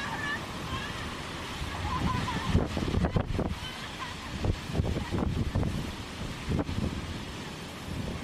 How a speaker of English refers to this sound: So the waves are coming back for one more go.